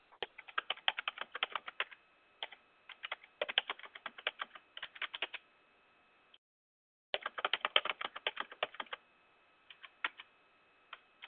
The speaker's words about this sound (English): You're fiercely typing. I am.